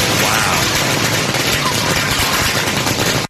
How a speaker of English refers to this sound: those people love fireworks. Sounds like a day in South Phoenix.